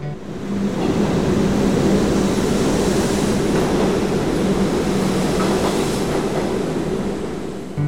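A train rolls through a station in Moscow with a loud, steady rumble and low mechanical hum, faint rhythmic clatter of the wheels running underneath for the whole stretch, with no voices.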